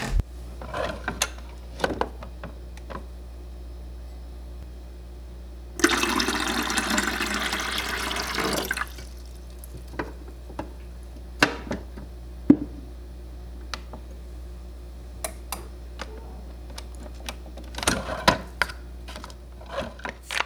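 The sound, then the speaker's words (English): A coffee machine in the kitchen of a house at work: scattered sharp clicks and clatters, then a loud, steady hissing rush lasting about three seconds, followed by more light taps and knocks. No one speaks. “Then, making my way to the kitchen, led by my noisy slippers clapping on the floor, I reach what is probably my favorite thing in this entire house, the coffee machine.”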